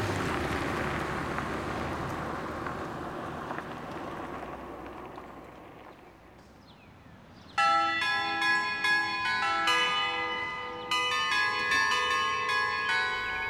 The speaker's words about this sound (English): That's an annoying doorbell.